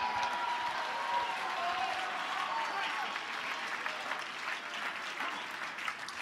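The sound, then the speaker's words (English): A church audience claps steadily throughout to praise God, a dense, sustained wash of many hands with a few voices shouting and cheering mixed in, holding at a fairly even loudness. “Clap your anointed hands.”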